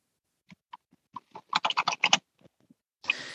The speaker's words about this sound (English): And then, who's typing? Mute yourself, please.